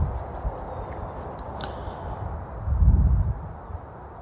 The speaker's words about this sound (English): The gentle sounds of water tumbling and birdsong.